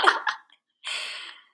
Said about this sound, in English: What the fuck are they doing? Are they running so hard? I can hear them panting.